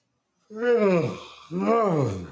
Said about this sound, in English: That was a big yawn. That's why I might not be able to get a full hour in, man. And it's only 9 o'clock and I'm about to break my neck trying to yawn.